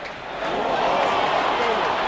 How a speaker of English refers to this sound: Football supporters, lots of them.